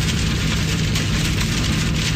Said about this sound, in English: We've been telling you the rain is really picking up and causing for some tough driving on the roads this afternoon. WTOP's … is driving through the rain. He's in Northwest D.C.